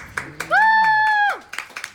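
A few scattered, sharp claps from an audience member at the start and end, in response to a speaker's comment, with a loud sustained high-pitched whoop held for nearly a second in between.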